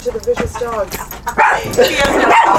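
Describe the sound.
A tan and white dog named Bourdain barks and yips protectively in a series of short, loud bursts that grow rougher and more sustained toward the end, with people's voices mixed in.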